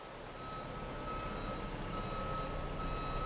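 A truck's reversing alarm gives a steady, high-pitched tone over loud, rumbling engine noise, with no talking, as trucks arrive unannounced at 6:40 on a June morning.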